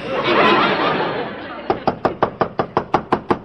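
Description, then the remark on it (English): A rapid, insistent string of about a dozen sharp, loud knocks by the landlady on an apartment door, evenly spaced, following a stretch of broad noisy murmur. “Only one person in an apartment house has got the nerve to knock like that, the landlady.”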